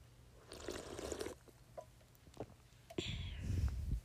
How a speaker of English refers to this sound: Sip of our sparkling water while we move on to the next trigger.